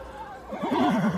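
A black horse with a golden mane whinnies once, a loud, quavering neigh that wavers up and down in pitch for about half a second before fading out.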